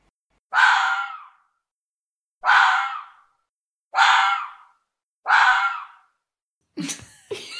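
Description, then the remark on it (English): Foxes screaming at each other: four loud, harsh, rasping screams at a steady pace, each cutting in sharply and trailing off, then a scrappier flurry of cries at the end. No talking. “They like to stand and scream in each other's mouths.”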